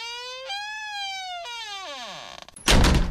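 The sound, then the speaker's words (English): A door hinge creaks in two long, squealing glides that rise then sag in pitch, ending with a loud thud as the door bangs shut. No one speaks. “I want to put a bit of oil on that door.”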